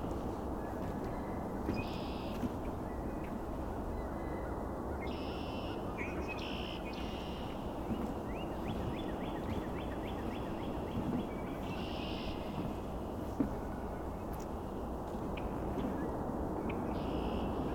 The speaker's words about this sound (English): This is only a handful of red-winged blackbirds. If we were here at sunrise or sunset, it would be 100 times more here, probably.